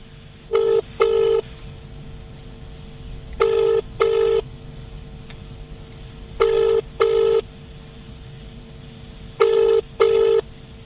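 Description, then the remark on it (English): A telephone line rings while a call is being put through to a bank advisor, with a double-burst pattern, four evenly spaced pairs of electronic tones over a faint, steady line hiss, with no voices. “Please hold while I put you through to an advisor.”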